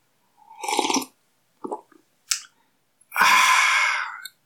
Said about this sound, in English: And let me take a sip of coffee since I'm talking about enjoying it. Now, didn't that sound good? Did that sound warm? Did it make your day? It made my day.